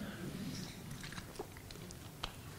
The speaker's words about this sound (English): Well, first thing, I need a sip of water.